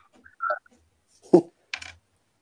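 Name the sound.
loud computer keyboard typing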